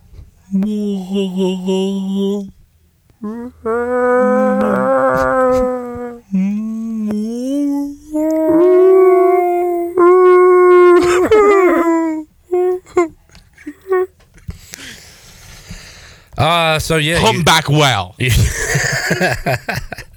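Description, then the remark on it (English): A human voice imitates a humpback whale call with several long, sliding, moaning tones that rise and fall in pitch, loud, followed by breathy rustling noises. “Can you make a humpback whale sound?”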